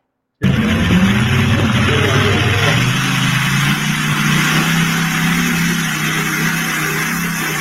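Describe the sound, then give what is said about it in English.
A car engine growls loudly, its deep throaty pitch dropping after a brief rev, then settling into a steady, rumbling idle that continues to the end. “Growl. One of the coolest sounds in the world.”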